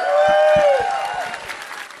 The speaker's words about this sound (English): Amazing stuff. There's nothing like a spontaneous burst of applause. And that was nothing like a spontaneous burst of applause.